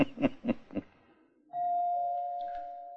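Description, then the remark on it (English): A doorbell rings with a steady, sustained mid-pitched tone that holds for over a second, following three short, evenly spaced thumps. No one speaks. “You'd better answer the door, my dear.”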